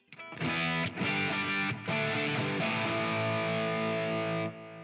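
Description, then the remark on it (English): Heavily distorted electric guitar played through a Tonemaster digital multi-effects floorboard: loud, dense chords struck in quick phrases with two brief breaks, then one long sustained chord ringing out before stopping. No voices. “Let's make some noise with this thing.”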